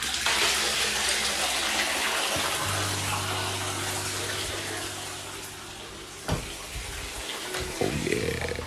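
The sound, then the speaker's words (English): Water pours steadily into a baby bath as body wash is dropped in to make bubbles, a continuous splashing rush with a low hum underneath and a couple of brief knocks near the end. “Drop that body wash in the water. In the baby bath. Let's see some bubbles.”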